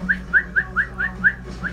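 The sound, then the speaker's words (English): A person whistles a quick run of short, rising chirps, about seven evenly spaced notes in under two seconds, clear with no talking. “Yeah, whistle.”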